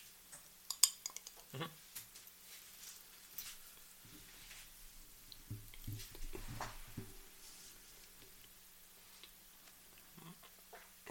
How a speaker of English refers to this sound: Mm-hmm. That's a lot of chewing going on. I'm giving him a lot of big... How much did you give me? A lot. You chewed for days.